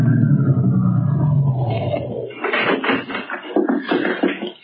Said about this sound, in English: a big car drove up to the only entrance. In the back seat of the limousine was William Marsden